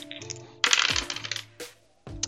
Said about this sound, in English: All right, roll 2d6 minus 1.